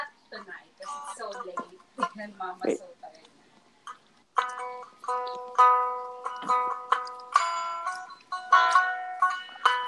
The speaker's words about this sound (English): You know those cheap plastic phones that would play random sounds like when you like pretend to call someone or like when you press like the number one on the dial tone? That's literally what it sounds like.